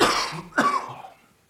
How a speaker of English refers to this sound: I gotta try not to cough in the mic.